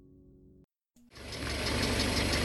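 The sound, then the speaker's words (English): An early automobile engine from the early 1900s: a low idling hum, a brief silence, then a loud, rattling roar with a steady chugging pulse that builds and keeps running. No voices. “Automobiles arrived during the early 1900s.”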